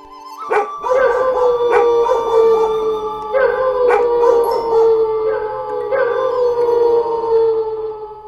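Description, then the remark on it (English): Every dog in the area howls together in long, wavering tones, with sharp barks breaking in every second or so. The chorus is loud and continuous throughout, with no talking. “It began with a bit of barking and crescendoed until every dog in the area was belting it out fortissimo.”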